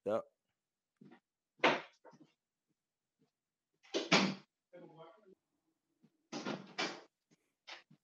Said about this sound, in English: give me 1 second. Let me close the door.